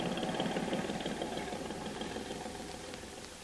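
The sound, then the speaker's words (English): A big boat's engine rumbles steadily with a low, droning throb, growing slightly fainter over a few seconds as the boat heads out to sea. No one speaks. “There be big boat, master. Go out to sea.”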